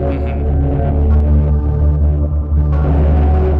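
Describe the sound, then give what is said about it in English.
A loud, sustained guitar tone pushed through a VCF3DB modular distortion effect, thick and buzzing with dense harmonics, its bright upper edge dipping briefly midway before flaring back. No one speaks. “So this thing is, I love how it sounds, because it's a distortion.”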